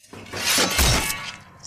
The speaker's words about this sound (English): Sounds very gruesome, that, yeah. Doesn't it? It sounds like she's carrying a tray of cutlery and she dropped it of some form. She didn't die from dropping a tray of cutlery.